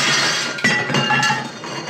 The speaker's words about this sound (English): He's hammering it so much that plates on a shelf in the foreground are shaken to the point of falling over and shattering.